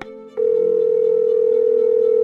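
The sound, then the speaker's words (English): A telephone ringback tone on an outgoing call: after a short click, a single steady electronic tone sounds loud and unbroken over the line for about two seconds, with no voices. “His arrest report had a phone number, so I gave him a call.”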